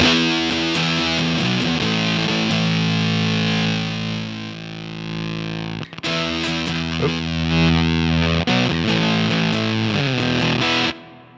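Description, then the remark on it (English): A fuzz distortion pedal, giving Big Muff-style sounds, roars through a thick, saturated guitar tone that sputters and shifts in texture as its supply voltage is varied, with a brief dropout near the middle. Loud, no talking. “So you can get like some Big Muff stuff. And if I mess with the supply voltage, then.”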